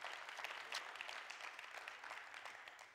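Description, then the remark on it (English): An audience claps for Jesus in a steady, dense wash of overlapping hand claps, sustained and fairly even in loudness for the full few seconds with no voices standing out. “you can clap for Jesus.”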